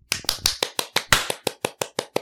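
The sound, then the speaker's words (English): A group does the 'Unity clap' after a count of 1, 2, 3: about a dozen sharp, crisp claps in unison in a quick, steady rhythm, evenly spaced and fairly loud, with no voices over them. “Well, should we start it off with the Unity clap?”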